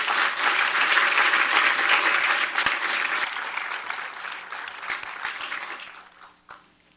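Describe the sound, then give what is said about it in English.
A crowd applauds with dense, steady clapping that stays loud for several seconds, then gradually thins out and fades, ending with a few scattered claps. “Y'all please get him a round of applause.”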